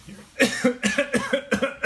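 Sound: cough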